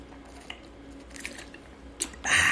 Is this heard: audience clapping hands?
no